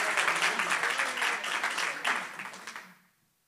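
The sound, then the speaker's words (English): A crowd bursts into loud, sustained applause mixed with scattered cheers and shouts, giving praise to God, a dense wash of clapping that holds steady for about three seconds before quickly fading out. “I said somebody give God a praise in this place.”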